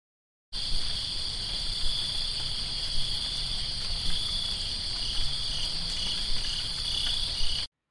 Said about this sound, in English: I'm going to insert some cricket voices.